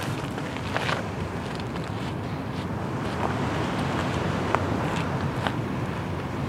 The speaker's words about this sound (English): Clouds, the lovely halo around the moon, and we can hear the gently lapping waves of the bay.